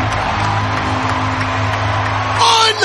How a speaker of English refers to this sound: Wow, man, it sounds like a playoff. Dude's incredible. The crowd was incredible. Crowd erupts!